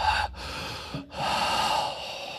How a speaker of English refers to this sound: Is a quiet, I don't know if you guys noticed this, but a quiet, heavy breathing I recorded from an early episode of Below Deck